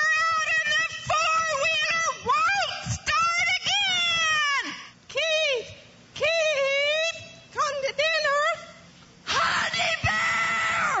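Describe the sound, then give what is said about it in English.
A woman's loud, shrill yells in a husband calling contest, a string of long wavering shrieks with short breaks between them, piercing, ending in a harsh raspy burst. “And my favorite is the husband calling contest.”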